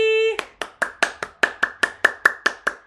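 A short steady tone cuts off into one person clapping, about a dozen sharp, evenly spaced claps at a brisk, regular pace, fairly loud and with no talking.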